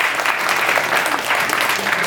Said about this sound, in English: I feel like a round of applause, come on.